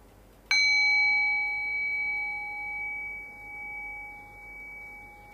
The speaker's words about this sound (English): Now ring the sound of the bell again. Rest your awareness on the sound of the bell. Allow the bell to guide your awareness into silence.